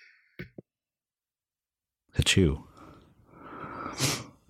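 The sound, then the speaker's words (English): A single loud sneeze bursts out after a near-silent stretch, followed by a few seconds of muffled breathy noise and rustling. Two short faint clicks come early on. “Achoo. Bless you.”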